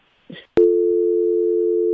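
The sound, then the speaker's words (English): A brief rustle and a sharp click, then a loud telephone busy signal after a dropped call: a steady electronic tone that holds unbroken to the end with no voices. “So we're going to go ahead and talk until Annie gets her back on the phone with us”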